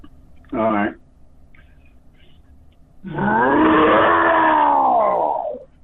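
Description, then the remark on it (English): A person imitates a lion's roar: a short grunt first, then after a pause a long, loud, drawn-out vocal roar lasting nearly three seconds before trailing off. “Can I hear another one of those lion's roars from you?”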